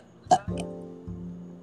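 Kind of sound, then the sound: human body sound, burp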